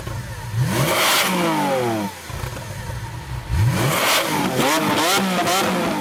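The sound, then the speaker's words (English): A loud Lamborghini sports car engine revs hard in two bursts, its pitch sweeping up and down with a brief lull between them and a roaring, snarling tone throughout. No one speaks. “you just type in Lamborghini on YouTube and you can watch them all day”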